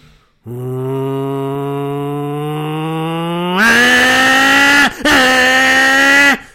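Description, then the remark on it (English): A person's voice imitates a car hitting VTEC, droning steadily at a low pitch before jumping abruptly higher and louder as if revving through a gear change, going up through two gears, with a brief break near the end. “But when you're hitting VTEC, you have to hit so many revs and then change your gear in between then, because it goes, right, here's my impression of a car doing VTEC.”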